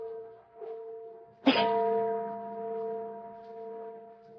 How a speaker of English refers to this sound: Church bell. Oh, there aren't any churches around here. Oh, sure there is. That little old church down at the other end of the valley.